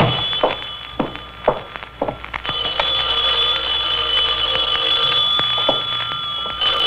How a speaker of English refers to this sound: Knew that phone would be ringing.